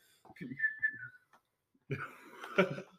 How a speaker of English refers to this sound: Funny enough, the whistles didn't help at all.